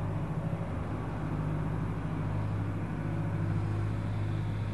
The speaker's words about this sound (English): There's the concept of a tractor. Le concept d'un tracteur. That's functioning. Ça, c'est pour fonctionner. If there was no concept, the tractor sound probably wouldn't be there.